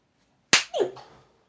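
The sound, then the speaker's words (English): A single sharp, loud slap to a man's face cracks out, followed at once by a short, falling pained cry that fades quickly into quiet. “Slap him good.”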